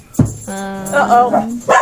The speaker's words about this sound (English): Dogs everywhere. Dogs! You didn't shut the door. God. Dogs everywhere. There's puppy. Dog apocalypse.